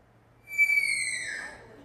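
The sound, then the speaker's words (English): A female sloth in heat screams from the top of a tree: one high, piercing, whistle-like note in D sharp that mimics the call of the Kiskadee flycatcher, held for about a second and sliding slightly downward as it fades, over a faint low hum. “She will climb to the top of a tree and scream for sex in D sharp.”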